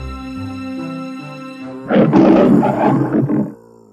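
A soft sustained musical tone plays, then a single loud lion roar bursts in, rumbling and raspy for about a second and a half before fading back to the quiet tone.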